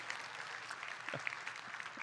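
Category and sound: crowd, audience applause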